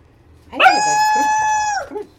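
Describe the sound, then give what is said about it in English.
A female dog gives one loud, drawn-out bark that stretches into a sustained, whining, almost howling tone for over a second before cutting off. No one speaks. “If she doesn't see me, she doesn't bark.”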